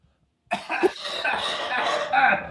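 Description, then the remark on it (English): A loud fit of coughing begins abruptly after a brief silence, with rough, throaty bursts running together for about two seconds. “…'s taking a minute to cough.”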